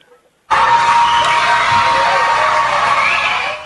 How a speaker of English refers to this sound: Students and teachers at a Puerto Rican school screaming and jumping for joy simply because after nearly 4 months, the power is back on.